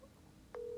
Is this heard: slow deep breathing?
no